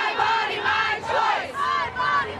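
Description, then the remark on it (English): A large protest crowd chants in unison, loud overlapping voices rising and falling in short rhythmic phrases, with brief dips between repetitions. “Is it marches and posters and chanting?”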